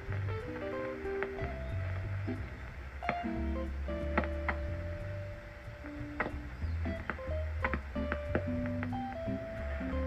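Steady electronic hiss and hum filled with warbling tones, short beeps and sharp clicks that come and go: localized interference picked up on a Satelit shortwave receiver while tuning around the band with the squelch open.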